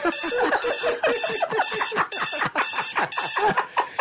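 An alarm clock rings in a steady run of loud, shrill electronic bursts, about two per second, repeating without pause for the whole stretch, with no voices over it.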